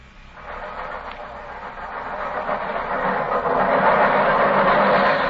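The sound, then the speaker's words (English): An underground train rumbles right past the windows, almost on their level, its steady roar swelling louder over a few seconds, with a faint rhythmic clatter of wheels beneath the broad hiss of motion. No one speaks. “Holmes, the underground runs right past here, almost on the level of these windows.”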